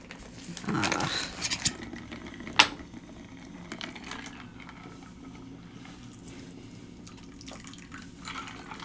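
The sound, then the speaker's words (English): A shaken cocktail is poured into a glass in a brief splashing rush near the start, followed by a sharp clink and then quiet trickles over a low hum. “All right, so give it a shake and then pour it in.”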